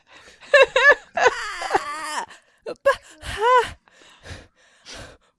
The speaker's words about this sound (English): Why are you panting so hard? I haven't even put on the hot sauce yet.